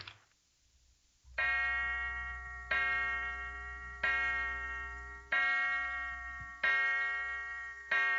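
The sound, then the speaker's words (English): A clock strikes six o'clock with loud, ringing bell-like chimes, evenly spaced about a second and a half apart, each tone lingering and fading before the next, with no one speaking. “Six o'clock, Mother's late.”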